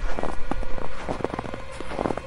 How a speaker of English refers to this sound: That was when I heard crunching footsteps.